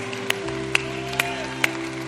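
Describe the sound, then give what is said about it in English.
Steady rhythmic clapping, about two claps per second, for everybody who prayed a prayer of salvation, sounds over sustained musical chords. The sharp, evenly spaced claps ride above a held keyboard-like tone, with no talking. “Let's give everybody that prayed that prayer an applause.”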